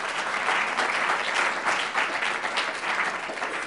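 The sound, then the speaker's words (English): A crowd applauds the physician assistant profession steadily, dense clapping filling the whole stretch at an even, fairly loud level with a bright, crackling texture and no voices rising above it. “To me, that deserves a round of applause.”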